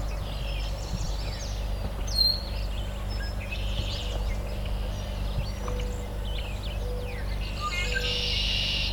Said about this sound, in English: Okay, there's our Fitzbue, the willow flycatcher.